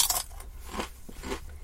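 Crisp, crackly crunching of a potato chip being bitten and chewed, with about three brittle bursts spaced irregularly over a second and a half, fairly quiet and with no talking.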